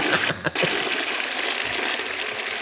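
A urinal flushes as its handle is pulled, one of a line of urinals, with a loud, steady rush of gushing water that fills the whole clip, briefly dipping near the start before surging on, with no one speaking.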